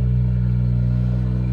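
A car engine runs with a steady, low droning hum, fairly loud, holding an even pitch throughout with no voices.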